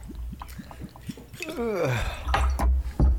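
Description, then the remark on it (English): Liquor is poured into shot glasses, 3.5 shots, a brief gurgling pour with a sliding pitch, preceded by a series of soft ticks and drips and followed by a few light knocks. “While you do that, I'm going to start pouring my 3.5 as well.”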